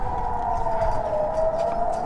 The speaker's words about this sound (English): So just a quick reminder, if there'll be another siren, so at maximum we have 30 seconds until the rocket hits, but it can be also less.